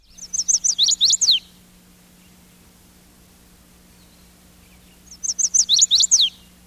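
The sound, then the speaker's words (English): A chestnut-sided warbler's mate attraction song, recorded with a microphone at the center of a large plastic dish, rings out twice, each a quick run of bright, whistled notes ending in an accented flourish, separated by a few seconds of quiet with a low steady hum beneath. “This song, the chestnut-sided warbler's mate attraction song, is transliterated in field guides this way.”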